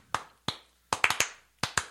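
About eight sharp hand claps with no talking, tapping out an uneven beat: two spaced claps, then a quick cluster of four, then a final pair.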